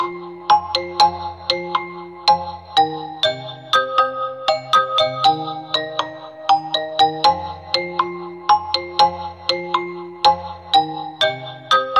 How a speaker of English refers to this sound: Look, if you like that vowel format sound, you can hear in that demo we just played back there, really giving you those oohs and those ahs sounds, and it sounds brilliant.